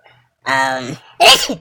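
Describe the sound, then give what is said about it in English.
A single loud sneeze: a drawn-out voiced intake rising into a sharp, hissing burst, followed by brief quiet. “bless you.”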